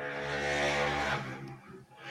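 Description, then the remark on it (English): A motorbike engine drones loudly with a steady, buzzy tone, then drops off and fades away as it passes, leaving a quieter rumble at the end. “It's a motorbike going past.”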